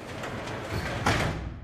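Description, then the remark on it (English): A house's garage door rumbles shut and is locked, finishing with a firm, louder clunk near the end; the sound is fairly steady throughout, with no voices present. “As my dad locked the garage door,”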